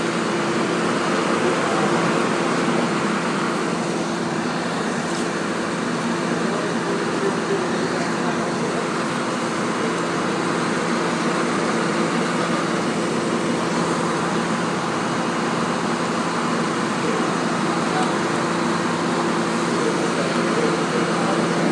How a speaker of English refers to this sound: Two-door commuter bus, air-conditioned, thankfully.